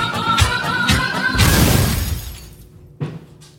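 A few heavy bangs thud and rattle in quick succession as a shoe being washed tumbles inside a clothes dryer, ending in a crash-like clatter, then one more sharp knock after a short pause.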